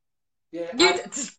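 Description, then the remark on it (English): A single sneeze erupts after a short silence, with a voiced wind-up breath leading into a loud, breathy burst and a brief trailing exhale. “God bless you.”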